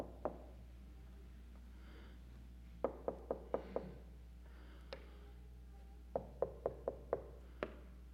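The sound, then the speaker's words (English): Knocking on a door in two quick bursts of about five raps each, with a few single knocks scattered around them. The knocks are crisp but fairly quiet, with no voices. “Will I open the door to him when I hear him knocking?”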